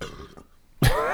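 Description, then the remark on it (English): A man coughs: a short, quieter murmur first, then a sudden loud, harsh cough burst that lingers with throaty rasp at the end. “coughing up his last cum shot right now.”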